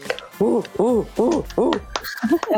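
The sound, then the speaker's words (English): A crowd whoops and hoots in four loud, rising-and-falling calls in quick succession, followed by scattered cheering and a few shorter shouts. “Oh, that crowd goes crazy.”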